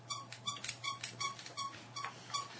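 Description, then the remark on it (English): A pen squeaks repeatedly, about eight short, high, scratchy squeaks in a loose, uneven rhythm, with a faint low hum steady underneath and no talking. “That's very squeaking annoying noise. Mm-hmm. That's my pen.”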